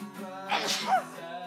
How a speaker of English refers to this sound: I'm sorry. I shouldn't have talked while you were sneezing. Sorry.